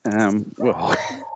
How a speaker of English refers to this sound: That friggin' dog is going to bark all night. Poisoning other people's dogs is frowned upon.